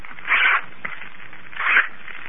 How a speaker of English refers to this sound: Now I'll tear three strips of paper.